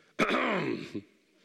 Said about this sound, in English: My wife, we've been married 15 years now, and we can go and have church with her mom and dad, and her mom can clear her throat at the back of the church, and my wife still gets goosebumps looking around.